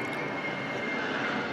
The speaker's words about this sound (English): Jet plane.